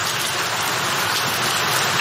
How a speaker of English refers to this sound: Hang on a second. What is that? Sounds to me like the sound of rain. Yeah, put some volume on that.